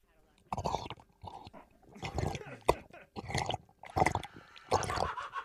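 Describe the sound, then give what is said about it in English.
A person drinking water: a series of wet sips and swallows in uneven bursts, with small liquid slurps and mouth noises between them. “I'd really like to drink some water.”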